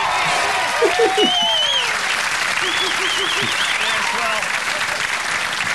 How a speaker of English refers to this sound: I think that was probably the phoniest, spontaneous round of applause I've ever heard.